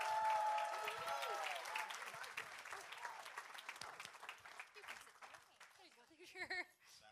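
A crowd applauds a couple being introduced, with dense, steady clapping and scattered cheers and whoops, loud at first and slowly tapering, with a brief burst of higher calls near the end.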